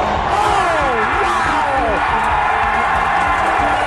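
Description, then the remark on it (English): A stadium crowd cheers in a steady, loud roar throughout, with individual whoops and shouts sliding up and down in pitch above the wash of noise. “Listen to this crowd.”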